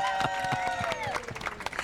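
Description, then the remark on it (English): A crowd applauds Ken Waissman and Tom Moore, original producer and director of the musical Grease, at its 50th-anniversary celebration, with steady, dense clapping mixed with sustained high cheers or whistles, loud throughout and without a break. “By the way, folks listening at home, there was no one holding a sign saying applaud. That was organic, loving, passionate thank you for the show.”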